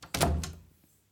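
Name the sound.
door being closed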